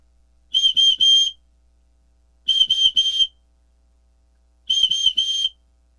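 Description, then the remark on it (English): Loud, shrill emergency whistle blasts in three evenly spaced groups, each a quick triple burst of piercing tone, with brief silences between and no voices. “An emergency whistle.”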